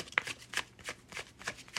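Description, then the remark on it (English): A deck of tarot cards being shuffled, a quick, steady series of crisp papery slaps and riffles repeating about every third of a second, with no one talking. “Now I'm going to shuffle this like a few more times.”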